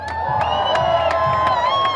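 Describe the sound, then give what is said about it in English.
A large crowd at the Mass Rally to Change the Rules for workers' rights cheers and shouts loudly and without pause in the street in front of Flinders Street Station, where marchers stopped traffic for the last speeches, a mass of voices carried along by steady, evenly spaced sharp beats like rhythmic clapping. “We are down in front of Flinders Street Station, where the marchers stopped traffic to hear the last speeches of the day.”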